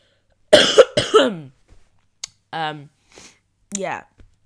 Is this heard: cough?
yes